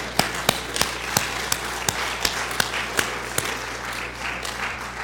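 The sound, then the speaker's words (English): An audience applauds military service members from the Army, Navy, Air Force and Coast Guard, a dense wash of clapping with a few sharp, evenly spaced claps standing out in a regular rhythm. No one speaks. “Hey, let's give these heroes a round of applause.”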